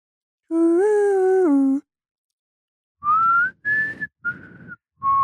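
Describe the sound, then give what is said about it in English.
A person whistles a short tune: first a long, steady note that dips and rises, then after a pause four shorter notes, a little breathy and uneven. “My whistling's not the greatest.”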